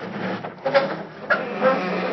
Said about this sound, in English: I'll just sneak by their window. Made it. I'll open the garage door real easy.